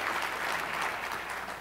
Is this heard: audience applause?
yes